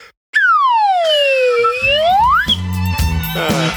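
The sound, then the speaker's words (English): A loud, pure-toned slide whistle swoops down in pitch and then glides back up in one long, smooth curve, before giving way to a brief jumble of busier sounds. “But, I played the old slide whistle instead.”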